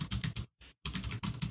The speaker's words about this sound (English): I wasn't gonna Google anything because my keyboard's so loud, but you made me.